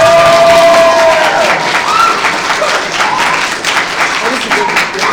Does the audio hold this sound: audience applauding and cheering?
yes